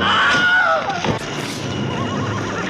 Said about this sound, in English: All right, so here's a compilation of Wilhelm scream. Let's see if this pans out or if this is just horrible.